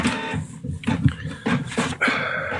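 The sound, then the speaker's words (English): A printer runs in uneven mechanical bursts, whirring and clattering as it feeds and prints, receiving more information from the computer, with brief pauses between passes and no voices. “It's receiving more information from the computer.”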